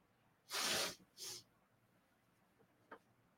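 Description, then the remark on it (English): Two quick hissing spritzes of a nasal spray, the first longer and stronger than the second, otherwise quiet, with a faint click afterward. “Nose spray.”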